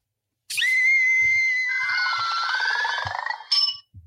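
A shrill recorded scream blares from a Monsters, Inc. Scare Energy tank toy bought at the lobby shop of Animal Kingdom Lodge, sustained for about three seconds with a harmonic, slightly tinny quality, then a brief sharp squeal at the end.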